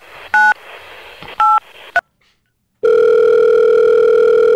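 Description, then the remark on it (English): Three short electronic keypad beeps, a brief pause, then a loud, steady telephone ringing tone that holds without a break until the end. Nobody speaks. “The farts are perfectly timed between the rings.”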